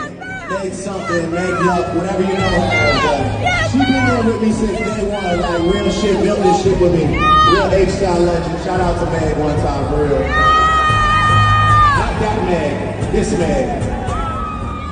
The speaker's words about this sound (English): The crowd's going crazy.